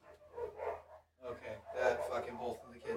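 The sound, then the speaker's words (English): The neighbor's dogs and the speakers' own dogs bark in a run of overlapping yaps, mixed in with people talking. “It's the neighbor's dogs, bro.”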